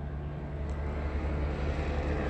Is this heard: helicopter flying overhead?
yes